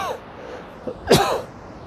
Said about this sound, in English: I got the COVID. No, I'm kidding. It's just a cough. Okay, so I'm probably, because I'm yelling top of my lungs.